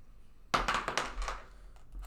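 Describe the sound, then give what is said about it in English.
Dice, a D20 and a D6, tumble across a tabletop: a sharp first strike, then a quick run of rattling clicks that thins out, followed by a couple of faint late ticks. No one speaks. “Roll a D20, and then roll a D6.”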